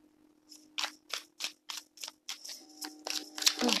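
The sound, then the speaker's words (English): Cards being shuffled for a card reading: a quick, steady run of about ten crisp papery slaps and riffles, moderately loud over a faint low hum, with no one talking. “I'm going to pull for one more card. Shuffling.”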